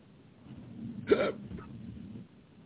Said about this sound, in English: And I've got the hiccups. Uh-oh. Well, better the hiccup than the fart, I figure.